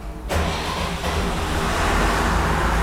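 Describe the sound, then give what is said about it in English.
A generator engine, started by holding in a green start button, bursts into life after a moment of near silence, then settles into a loud, steady rumbling roar with a deep throbbing drone underneath, running at 50 hertz and 400 volts. “Okay, generator's running, 50 hertz. 400 volts.”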